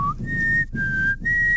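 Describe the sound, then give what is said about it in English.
Someone whistles a sci-fi television theme tune that evokes The X-Files: a quick upward slide into three long, steady, high-pitched notes separated by brief breaths, clear over a low background rumble. “That's very X-Files.”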